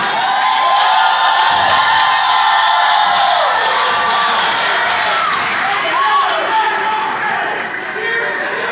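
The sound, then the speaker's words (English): A large crowd cheers and claps at the mention of Jerry Lawler in a loud, steady roar that holds for the whole stretch, with scattered shouts and whoops rising above the dense wash of noise. “Hey, I don't say Jerry Lawler for y'all to clap or cheer.”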